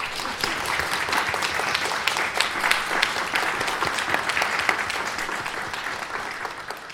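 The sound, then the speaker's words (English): Sustained audience applause for guest speakers at an event in Windsor, a dense wash of many hands clapping at a steady, fairly loud level for several seconds without any talking over it. “Can we please give them another round of applause?”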